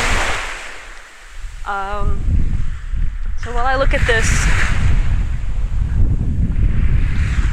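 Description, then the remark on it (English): Continuous roar of ocean waves surging onto a shore at sunset, mixed with gusty wind on the microphone; a man's voice speaks briefly over the steady wash. “sunset glow over the ridge here, I'm gonna shut the hell up and let you listen to these waves.”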